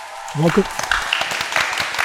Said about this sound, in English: So let's clap it up